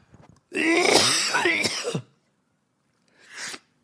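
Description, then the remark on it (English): A harsh, drawn-out bout of throat clearing and coughing, loud, followed after a short pause by one smaller rasping cough. No speech. “You're making me have a coughing fit.”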